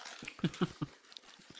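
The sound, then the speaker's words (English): A dog sniffs at the smell of chicken and lets out three short, soft whimpers in quick succession, quiet, with faint rustling behind and no one talking. “She's smelling the chicken.”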